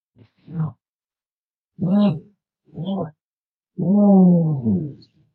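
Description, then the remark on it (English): Four deep, guttural booming calls of an emu drumming, the last one longest and loudest, each a low rumbling pulse separated by short silences. “It's like a drum. Mad. It's way more guttural than you think it's going to be.”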